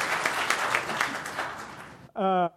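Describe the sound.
An audience applauds for about two seconds, a dense, steady crackle of many hands clapping, which stops abruptly before a single voice briefly speaks.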